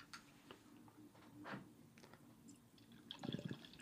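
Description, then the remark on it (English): Irish red beer being poured into glasses, with a trickling, splashing liquid sound, soft bubbly drips and a fuller glug near the end, with no talking. “With that, why don't we let's pour these.”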